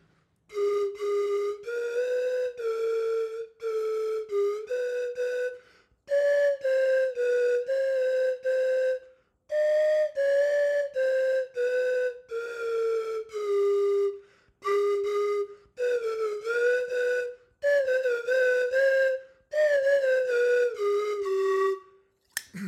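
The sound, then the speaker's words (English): A slide whistle plays a wavering tune in short phrases, its pitch gliding up and down between notes, with brief pauses between runs. Fairly loud, with no talking. “Slide Whistle Joins The Band”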